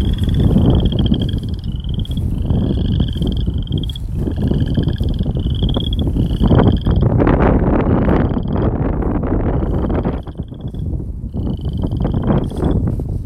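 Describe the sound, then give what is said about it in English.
A chorus of frogs calls in steady, repeated, loud trilling bursts over a constant low rumble of wind buffeting the microphone. No one speaks. “I hope you enjoy the frog songs, and we will see you next time.”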